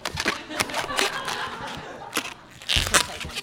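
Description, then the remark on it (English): Rubbery squeaks and crackling friction as an old long balloon is twisted into a Snoopy dog shape, coming in irregular bursts over a few seconds. “It's funny, like, I don't buy these balloons very often. I can feel that this one's kind of old, so it actually might pop.”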